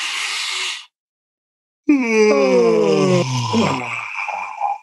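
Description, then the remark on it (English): A breathy, hissing intake of air, a short pause, then a long, exaggerated, full-on voiced yawn that slides downward in pitch, fairly loud, trailing off into a breathy sigh. “Now, we're going to actually do a full-on yawn. You're going to take it and you're exaggerate the yawn.”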